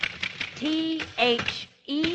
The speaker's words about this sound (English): Manuscript paper, thesaurus, dictionary, yes, and the inevitable typewriter, which at the moment is a triumphant sound. Triumphant indeed.